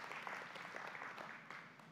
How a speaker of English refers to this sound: Because, yeah, let's clap. I like that.